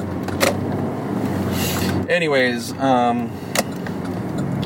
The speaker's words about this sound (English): There's this crazy traffic here. I'm trying to just do a little kind of errand, essentially. I'm not even going anywhere, but it is fucking traffic out here.